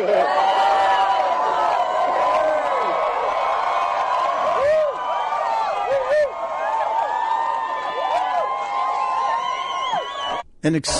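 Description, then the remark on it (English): A large crowd cheers loudly for about ten seconds after Johnny Depp asks when an actor last assassinated a president. A dense roar of overlapping voices with whoops and shouts rising above it, dropping off abruptly near the end. “An extended cheer, a loud extended cheer. It's like 10 seconds of cheering from the people in this crowd.”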